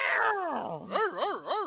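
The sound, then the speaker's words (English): A human voice imitates a dog barking. It starts with a long falling howl-like whine, then breaks into three quick rising-and-falling yelps, fairly loud. “It's between … and … that's barking”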